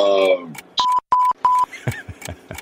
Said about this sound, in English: The buzzer just went off.